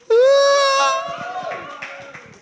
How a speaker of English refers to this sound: Shout out to everyone listening at home and everyone listening here. Give us a cheer, everyone listening in the room.